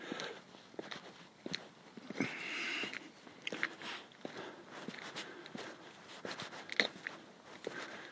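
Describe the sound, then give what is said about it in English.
Steady footsteps of a person walking outdoors at night with a dog following, each step a crisp crunchy thud at an even pace, over a soft hiss of background noise with no talking. “I just want to walk. The dog can follow me.”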